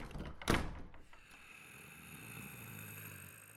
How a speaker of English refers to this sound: Then Knuckles Jr. walked forward into the room and tripped in a way that the door behind him closed and was now locked, and they were in the room, so they were locked in there.